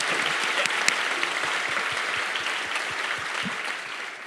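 An audience applauds steadily, a dense, bright wash of many hands clapping at an even, fairly loud level that eases slightly toward the end.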